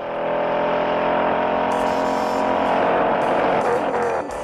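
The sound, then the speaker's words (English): A Mustang muscle car engine in the famous chase sequence of the 1968 movie Bullet, Steve McQueen driving it through the streets of San Francisco, roars loudly and continuously, its throaty rumble rising as it revs hard, with brief hissy bursts that suggest tires or gear changes. “In the movie, there's a pretty famous chase sequence where Steve McQueen drives his Mustang all over the streets of San Francisco.”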